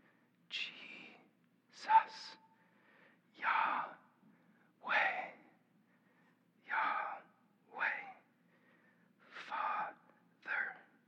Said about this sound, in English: Breathing out could be a syllable. Breathing in could be a syllable.